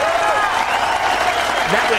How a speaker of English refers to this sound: And he got an absolute rousing reception from everybody after he finished his last round last night. Just a closing four for Tiger Woods, 78 and 75, but that is not going to stop the rapturous applause.